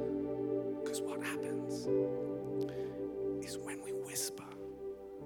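Breathy, hushed whispering comes in two short bursts close to the microphone, sitting over a steady low hum that runs underneath throughout.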